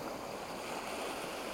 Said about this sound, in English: The waves break and foam over your wet toes